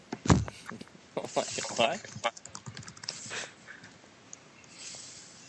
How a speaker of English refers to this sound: What? What's going on here? Who's typing?